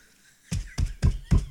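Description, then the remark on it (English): Notes shuffled and knocked against a desk in a news-anchor-style shuffle: four quick, evenly spaced thumps with a papery rustle on each, fairly loud, no voices. “Can you do the news anchor shuffle?”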